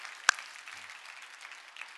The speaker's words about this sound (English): Can we give the Lord a clap offering of praise? 주님의 영광의 박수를 드리겠습니다.